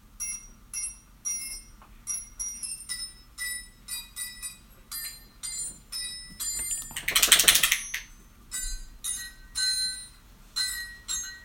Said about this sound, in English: So, all right, guys, I'm about to pull up a Christmas song for you played on wrenches. What? So, we hope you like this. Oh, this Jingle Bell.